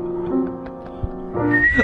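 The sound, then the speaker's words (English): A short melody is whistled in sustained, steady notes, fairly loud, with the pitch jumping higher toward the end. No one speaks. “I was going to whistle along.”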